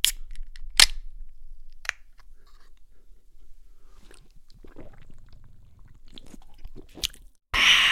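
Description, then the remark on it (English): A sharp metallic click and pop of a carbonated drink can opening, followed by quiet gulping and swallowing sounds as the drink is poured into the mouth, then a brief burst of fizzy hiss at the end. “When I'm at a loss for words, I'm just going to let you hear the sound of it as I open a can, pour it into my mouth, and enjoy it.”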